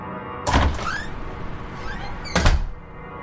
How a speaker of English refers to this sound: He burst through the back door.